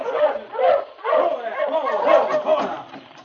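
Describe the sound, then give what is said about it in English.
A sled dog team barks and yips excitedly in a steady, overlapping chorus, loud, with a few whimpering notes mixed in, as it comes toward Sergeant Preston on the way to Whitehorse. “After walking toward Whitehorse for almost half an hour, Sergeant Preston finally saw a dog team coming toward him.”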